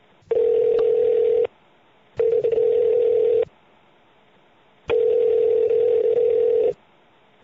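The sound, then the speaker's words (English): A telephone line tone plays over the phone in three long, steady bursts separated by silent pauses, fairly loud, with no one talking, as a call is placed from the HP studios. “And why don't we get her on the phone and see what she can teach us about Non-24. Okay, I'll call her up.”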